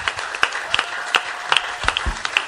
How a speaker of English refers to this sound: Amen. If you are clapping for Jesus, clap.